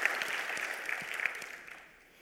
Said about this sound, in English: Come on, let's give the Lord a round of applause for that truth.